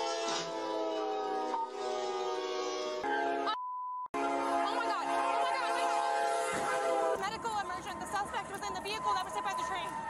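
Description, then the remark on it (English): A train hits a US police car with a handcuffed woman inside while officers search her vehicle: the train's horn blares loudly, a short electronic beep cuts in, then a heavy grinding, roaring crash noise takes over, with voices mixed in. “A train hits a US police car with a woman handcuffed inside.”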